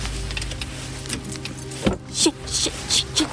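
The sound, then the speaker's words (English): Harsh scraping of metal against a car's paintwork, several short grating bursts near the end, over a low steady engine hum with a sharp knock in the middle. “This was my third little scratch on the car.”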